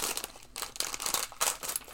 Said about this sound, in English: Just going to crunch some bags. Make crunch myself feel included. Part of the gang.